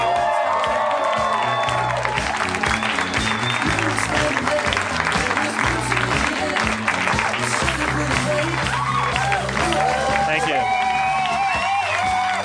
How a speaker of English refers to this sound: You're applauding yourselves. You're applauding yourselves.